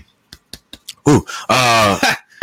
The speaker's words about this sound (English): Let it out, coach. Go ahead and cough. It's okay.